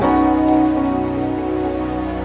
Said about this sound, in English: Don't stop clapping.